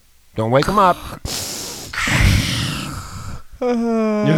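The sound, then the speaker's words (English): A voice mimics snoring, with raspy, breathy inhales and snorts broken up by short voiced groans, all delivered loudly over a few seconds. “So the Democrats, or the demon rats, are snoring through all the key issues that Americans are concerned about.”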